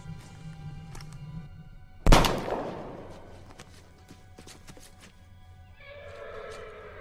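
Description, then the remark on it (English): A horse whinnies near the end, a bright, wavering call that follows a single loud, sharp thud with a ringing decay. A low rumble sits underneath, and no one speaks. “I'm just after tending to this here horse is all.”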